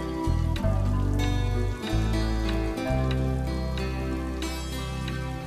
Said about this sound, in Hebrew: שירים שמלאים בסאונדים של גשם בשעה הזאת.